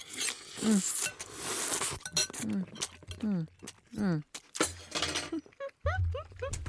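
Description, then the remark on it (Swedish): Close, loud slurping of ramen noodles, a wet hissing burst at the start followed by shorter sucking slurps, with people talking and murmuring in between and a few light clinks of dishes. “Det som är så roligt med ramennudlar det är ju det att när man går på en riktig ramenrestaurang då ska det ju surplas.”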